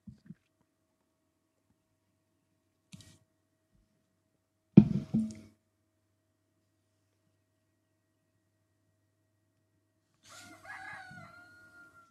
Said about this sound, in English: My rooster tells you hello and good morning. They're soon to be in their pen.